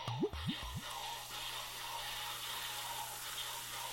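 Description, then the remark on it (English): Dark brown beer being poured into a glass: a few quick gurgling glugs at the start, then a steady foamy rush of liquid, moderately loud over a faint low hum. “And the pour over the music.”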